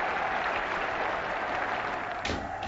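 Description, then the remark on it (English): Thunderous applause from many hands in an arena as Androcles and the lion waltz out fills the whole stretch, a dense, steady roar of clapping that holds its strength throughout with no voices breaking through. “Then, amid a sudden burst of deafening applause, they finally waltz out.”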